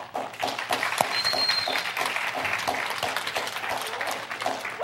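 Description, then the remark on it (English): An audience applauds steadily for several seconds as someone comes in, dense overlapping claps at a fairly loud, even level with a few sharper individual claps standing out. “All right, everyone, just really quick, when he comes in, just clap. Just start clapping.”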